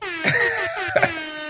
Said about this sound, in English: Air horn in there. It's better if you press a multiple.